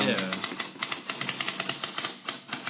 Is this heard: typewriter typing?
yes